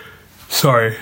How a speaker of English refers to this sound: Sorry for yawning.